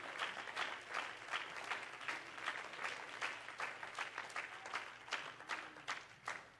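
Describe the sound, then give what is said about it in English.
A crowd claps hands to God in praise, in steady, rapid applause, many overlapping claps forming a dense, sustained patter that stays fairly even in loudness, with sharper individual claps standing out toward the end. “Could you clap your hands to God with faith?”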